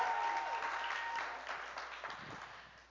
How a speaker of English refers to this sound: so another round of applause for her for being brave and amazing.